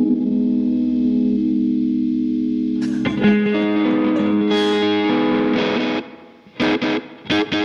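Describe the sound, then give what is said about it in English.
A steady, buzzing electronic drone from an effects unit holds a low harmonic tone, then thickens into a brighter, distorted wash before breaking into short choppy bursts at the end. No one talks. “It kind of makes it, it seems like a good way to make drones and stuff.”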